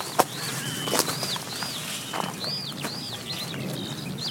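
A skylark sings overhead, a steady run of high, arching whistled notes repeating every half second or so, over soft outdoor rustling and a few brief crackling thumps, as people walk through a gap in a hedge to a small gate.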